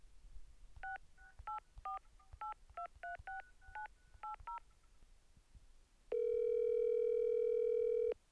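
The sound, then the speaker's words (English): A phone number is keyed in on a touch-tone phone: about eleven quick dual-tone beeps in an uneven rhythm, followed by a pause and then a long, steady tone. Clear, with no voices. “You can phone a friend.”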